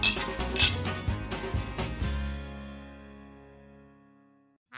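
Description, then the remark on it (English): Several glasses clink together in a toast in quick succession, bright, and the last touch leaves a clear ringing tone that fades slowly into silence. No one speaks. “Well, I think it's a cheers to that. Bless. Cheers.”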